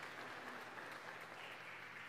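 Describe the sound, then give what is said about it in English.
An audience claps together, giving the Lord a round of applause for his faithfulness, in steady, dense applause: a continuous crackle of many hands that holds at an even level throughout, with no voices standing out. “Let's give the Lord a round of applause for his faithfulness from generation to generation.”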